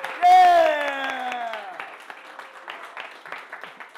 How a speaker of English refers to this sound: I'll clap for mine. Clap for you.